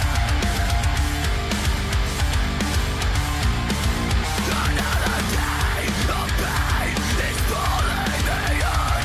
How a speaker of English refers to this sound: Great metalcore riff. Yeah, those guitar tones. Great. High vocals.